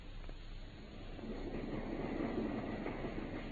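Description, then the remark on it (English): A steam train rolls along the rails with a steady, continuous rumble and faint rhythmic clatter, building slightly in loudness, with no voices. “I think we have just time to catch our train at Paddington.”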